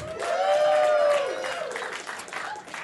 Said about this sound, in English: Please give a round of applause to our erotic fan fiction author,